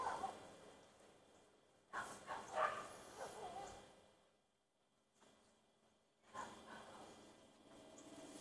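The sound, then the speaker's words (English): A dog barks a few times at a person in their own yard, short muffled bursts in two clusters separated by a quiet pause, faint against a low outdoor hush. “That dog's barking me in my own yard.”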